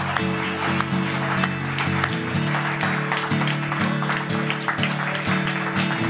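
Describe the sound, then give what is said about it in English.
A church audience claps steadily and densely for Jesus throughout. The crackle of many hands is layered over a sustained organ-like musical tone that shifts pitch a few times. “Let's clap real good for Jesus.”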